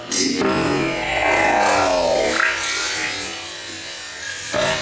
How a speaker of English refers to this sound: Bang! That's the sound of it sloshing in the bowl there. Dirtying the water, mashed potato and water in the sink.